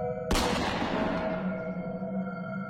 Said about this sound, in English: McDaniel fired his pistol.